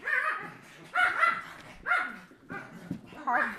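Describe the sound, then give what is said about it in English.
Several dogs bark and yip in short, loud bursts while playing, about five clustered over a few seconds, with excited whining between them, as if roughhousing. “My dogs are playing and they're being really loud.”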